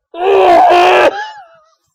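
A woman, the character Polly, lets out a single loud, sustained scream lasting about a second, cutting off sharply and trailing into a brief fading echo. No speech accompanies it.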